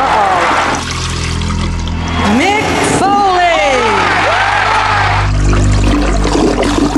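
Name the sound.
toilet flushing sound effect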